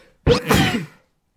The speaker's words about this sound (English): Yeah, right. I can't trust myself to, man, I'm about to sneeze again.